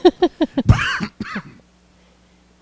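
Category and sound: human body sound, cough into the microphone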